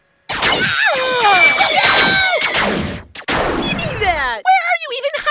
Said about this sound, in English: We said no plasma pistols! It's not a plasma pistol, it's an ion cannon!